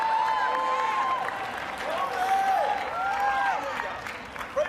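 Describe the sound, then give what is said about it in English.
A church audience shouts and claps together, a dense, steady wash of applause with raised voices calling out over it for several seconds. “It's shouting time in church this morning.”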